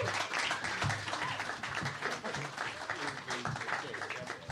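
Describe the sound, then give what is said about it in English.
A crowd applauds four performers as they are all brought out, a dense wash of many hands clapping at once with a few whoops mixed in, holding fairly even loudness for several seconds. “One round of applause for everyone.”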